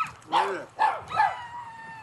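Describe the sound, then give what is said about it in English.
A peacock gives three loud, harsh, wailing calls in quick succession, each a short rising-and-falling cry with a nasal, strained tone, followed by a lingering high ringing note. “Is it a peacock?”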